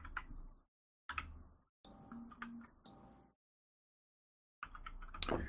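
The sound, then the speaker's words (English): Quick clusters of clicky computer-keyboard keystrokes, moderately loud, come in several short bursts separated by brief silent pauses, with no one talking. “Are you typing this twice”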